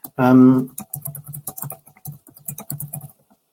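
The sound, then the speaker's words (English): Rapid typing on a computer keyboard, typing a message asking whether there is an issue with sound, with irregular bursts of crisp key clicks running for a few seconds after a brief hummed vocal sound at the start. “Just typing in, is there an issue with sound into the thing?”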